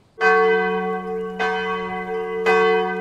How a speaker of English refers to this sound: The church bells in the village of Limmen have been ringing on Sundays since the 13th century.